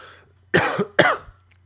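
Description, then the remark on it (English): Two quick, harsh coughs in close succession from a person with COVID, loud, with no talking around them. “Oh, the cough.”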